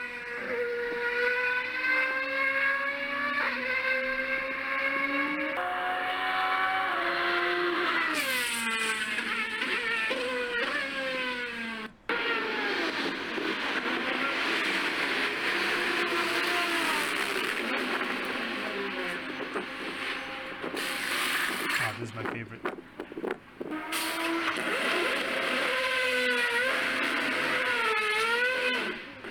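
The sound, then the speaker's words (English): A race car engine drones loudly through the pit lane, its buzzing pitch rising and falling in repeated sweeps as it passes by, with no talking over it. “It might be a little bit hard because it's in pit lane right now, but this is how it sounds as it passes.”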